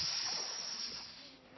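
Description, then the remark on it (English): A voice imitates a snake's hiss, a steady breathy sss lasting over a second and fading gradually toward the end, fairly loud with no other sounds. “You open it up and there's a snake going.”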